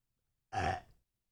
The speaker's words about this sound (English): Burps.